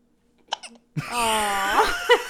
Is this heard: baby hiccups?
yes